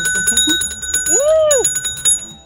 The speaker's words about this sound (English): What? Did I do something wrong? No. Oh. You know, let the buzzer ring?